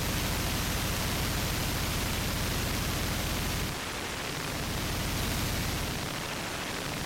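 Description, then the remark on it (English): Loud electrical buzzing and static hiss as current runs through a fingertip pressed on a device's receiving post, heard through a Soma Ether, a steady low hum that breaks off briefly partway through, then returns, with no voices. “All I'm doing is I'm pressing my finger onto the receiving post, and you're hearing that electrical transmission inside the ether,”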